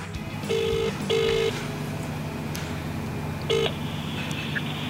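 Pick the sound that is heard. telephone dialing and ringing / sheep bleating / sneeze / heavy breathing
telephone dialing and ringing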